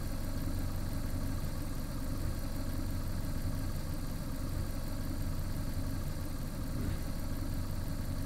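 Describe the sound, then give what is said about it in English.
A truck engine idles steadily, a low rumbling drone with constant vibration and no change in pace throughout. “Nice truck.”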